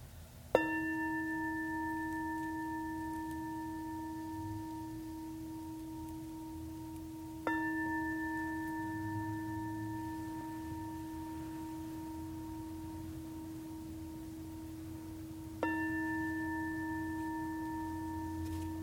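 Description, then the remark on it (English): A meditation bell is struck three times at slow, even intervals, each strike a clear, bright tone with steady harmonics that rings out and sustains until the next. No one speaks. “And when you hear the sound of the bell, you can open your eyes when you're ready.”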